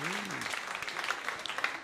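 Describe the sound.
An audience claps in a dense, steady round of applause, bright and continuous, with a brief voice at the start rising over the clapping.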